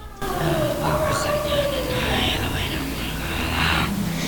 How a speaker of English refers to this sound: As they were walking, they heard the slight chanting as if they were in a service.